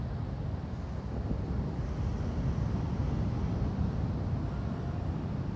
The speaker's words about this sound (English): I'd love to invite you to close your eyes. And relax the churning of the ocean, the noisy waves, the power.